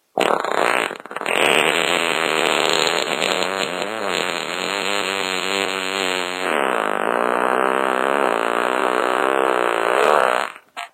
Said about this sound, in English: All right. Okay, there was the fart noise that showed that I was wrong.